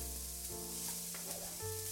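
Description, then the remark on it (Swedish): Onion sizzling in a very hot frying pan taken off the gas flame, a steady hiss of crackling fat lasting throughout, with a low hum underneath and a faint stirring clatter near the end as the onion is stirred; no one speaks. “Men det är ju det här fräset vi verkligen, verkligen vill åt.”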